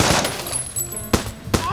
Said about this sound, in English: Machine gun? Again? Oh, I hate machine guns!